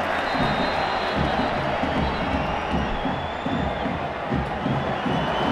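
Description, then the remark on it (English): A large crowd at a football match involving Barcelona, getting soaked in the rain, roars and applauds steadily, a dense, continuous wash of cheering and clapping that stays loud and even throughout, with no single voice standing out. “And the crowd are really responding to that, despite the fact they're getting a proper old soaking.”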